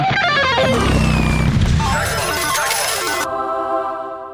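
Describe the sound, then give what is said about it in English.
A loud, chaotic burst of sound effects made by a sound effects guy to mimic a motorcycle ride on the radio: clashing ringing tones, whistling pitches, a low rumble and crashes piled together for about four seconds, with no talking. “A feeling that would be impossible to recreate on the radio. Until now. Hit it, sound effects guy!”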